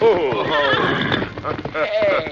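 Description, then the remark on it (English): A big white horse wearing Silver's saddle, bridle and martingale whinnies loudly, a long wavering neigh that rises and falls across a couple of seconds, with faint hoof clopping underneath. “Not a rider, Tonto. Just a horse. But a good horse.”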